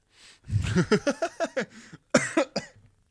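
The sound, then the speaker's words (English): A loud fit of coughing from someone who drank coffee with bits of limescale in it: a rapid string of harsh, voiced coughs, a brief pause, then a second shorter burst of coughs before it trails off into quiet. “I'm coughing because my coffee had bits of limescale in.”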